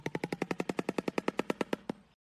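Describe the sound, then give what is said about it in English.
A bird clattering its big, hard bill together, not a vocal call: a rapid, even, machine-gun-like run of about eighteen hard wooden clacks, easing slightly toward the end before stopping abruptly. No voices. “And the way they make it, they're quacking their bill together. It's not even like a vocal call. It's just like quacking their big, dumb bill.”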